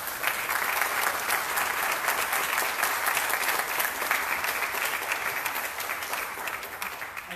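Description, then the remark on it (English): A crowd applauds steadily for several seconds, a dense wash of many hands clapping at an even loudness with no voices standing out, at a Richmond City Council meeting after a public speaker finishes. “To hold your applause.”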